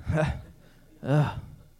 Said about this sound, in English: 23. If you really need to know, 23, my parents just gasped a little bit.